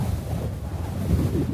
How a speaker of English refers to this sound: Roofs in Arizona take a beating. The sun cooks them. The wind pulls at them.